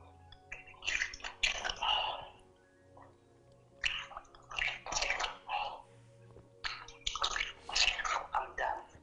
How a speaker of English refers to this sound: Take the water, wash your face 3 times. Rinse your face 3 times.